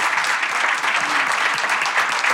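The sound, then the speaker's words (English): Sustained audience applause for all of the panellists at the end of a morning panel session, a dense, steady patter of many hands clapping at an even loudness throughout, with no voices heard over it. “But could I please get a big round of applause for all of the panellists this morning?”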